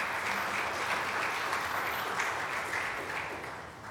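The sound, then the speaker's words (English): Sustained audience applause, a dense wash of many hands clapping at a steady level before tapering off slightly toward the end, with no talking over it. “Can we give that a big round of applause?”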